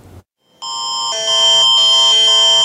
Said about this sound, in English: like a lot of people were, by a test of the province's emergency alerting system.